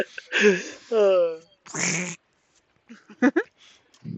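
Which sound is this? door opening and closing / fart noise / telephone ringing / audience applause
fart noise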